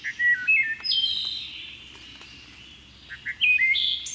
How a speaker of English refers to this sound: Some believe the song of the wood thrush to be the most beautiful bird song in North America.